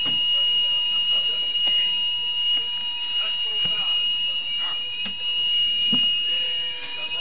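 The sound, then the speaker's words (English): A fire alarm rings steadily throughout a lecture, a loud continuous high-pitched electronic tone, with muffled voices and room noise underneath. “Brother, it's a bit difficult to hear you with this alarm going on.”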